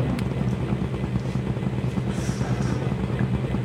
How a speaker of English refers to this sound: The helicopter's gonna let us off a little further away so we can sneak up. So, Marine One, could you please shut off that racket? It's got silent mode?